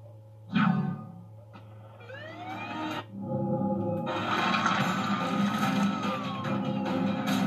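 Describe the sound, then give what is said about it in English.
An ambulance siren wails with rising and falling pitch sweeps, sitting within a dense, noisy mix of other sounds that grows louder and busier partway through. “Close enough to the ambulance in time.”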